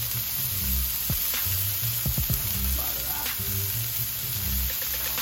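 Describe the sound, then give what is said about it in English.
Steady, loud sizzling of yam fries frying in hot olive oil in a pan, a dense crackling hiss throughout with a few clinks and low thumps, and a brief spoken word near the start. “then you start to hear the water content, right? Sizzle down, relax.”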